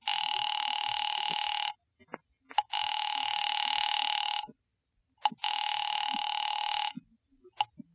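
A telephone line rings three times in long, steady buzzing bursts separated by short pauses, loud, with faint clicks in the gaps and no voices, as a call is placed to a husband's office.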